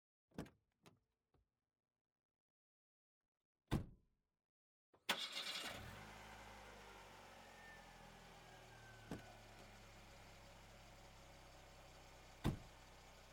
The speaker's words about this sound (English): All right, get the car started.